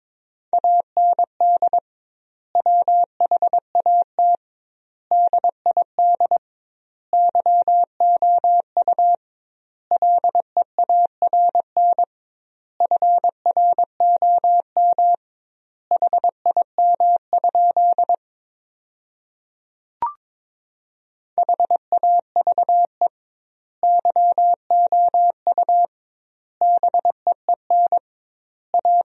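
Morse code practice sent at a brisk 22 words per minute with double word spacing, sentences built from the top 300 words: a single steady mid-pitched beep keyed into rapid dots and dashes, grouped into words with wide gaps, plus one short pause and a click midway.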